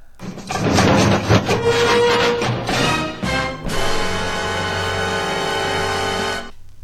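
A compiled car crash sound played backwards: a dense jumble of clattering, scraping debris and glass churns for a few seconds, then gives way to a steady, loud roaring whoosh of the car that cuts off abruptly.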